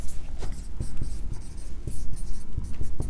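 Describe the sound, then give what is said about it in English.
A pen scratching across paper in quick, uneven handwriting strokes, fairly loud, with brief pauses between bursts of writing and no voices. “Man, my writing gets worse and worse every day.”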